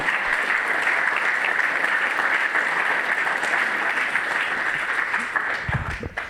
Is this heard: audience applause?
yes